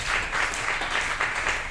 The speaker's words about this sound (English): Let's give a little smattering of applause. Just to make sure we got this.